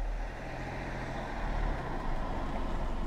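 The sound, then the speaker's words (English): A car engine idles and rumbles, a steady low drone of a car manoeuvring slowly into the parking space right next to the recorder in a train station car park, with no voices. “Now she's trying to park right next to me.”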